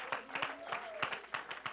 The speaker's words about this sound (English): Let's give the Lord a hand clap of praise in the house.